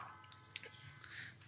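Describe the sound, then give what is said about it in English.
Hoppy Madame beer, a floral 4% beer, being poured, a soft, continuous foamy hiss and fizz with a brief sharp splash or clink partway through, fairly quiet and with no talking. “So let me pour it.”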